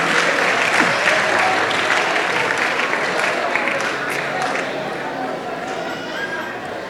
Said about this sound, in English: Oh, clap for them again.